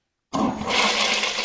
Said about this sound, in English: Then all you can do is flush it and move on. Am I right? Flush it and move on.